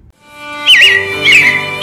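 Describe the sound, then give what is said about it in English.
Robins chirp in two bright, warbling bursts of high, sweeping notes in a scene of the Carousel Theater show, heard over a steady humming drone with no talking. “Yeah, it looks like the Robins are getting ready to celebrate Valentine's Day today.”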